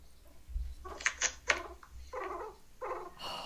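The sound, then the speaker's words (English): A guinea pig vocalizes with a few sharp, high squeaks followed by softer, rumbling chirps in short bursts, fairly quiet overall and with no talking. “But we do have a little message from Sammy and the guinea pig.”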